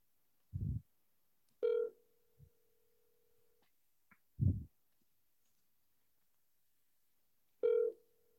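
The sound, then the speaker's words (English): An odd outgoing ringback tone on a phone line: a buzzy burst that settles into a steady two-second tone, then repeats after a pause, with a few dull low thumps in between. “Oh, it's ringing.”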